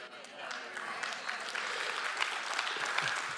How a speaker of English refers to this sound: Well, that didn't win me over at all, that wonderful, overwhelming clap right there.